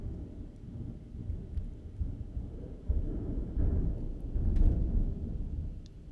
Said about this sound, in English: Is that a garbage truck? That is thunder. Oh, I hope my mic picked all of that up.